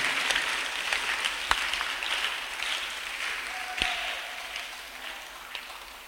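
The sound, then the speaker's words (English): An audience claps together for the Lord in a dense, sustained wash of applause that holds steady for several seconds, with a few sharper, louder claps popping out of the crowd. “Somebody put your hands together for the Lord. You see, as somebody is clapping, God is taking a decision concerning you.”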